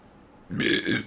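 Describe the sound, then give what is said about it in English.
A single loud, drawn-out burp after drinking seltzer begins abruptly about halfway through, rumbling low with a raspy upper edge and a slight dip before trailing off. No talking accompanies it. “Excuse me. I'm drinking seltzer.”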